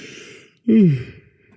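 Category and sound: human body sound, yawn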